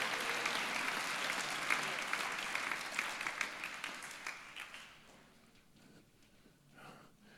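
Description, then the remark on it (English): A church audience claps together as a praise offering to the Lord in a dense, sustained burst of applause that gradually thins and fades over several seconds, leaving scattered claps and faint murmuring near the end. “Oh, yes, my Bible says, clap your hands, all you nations.”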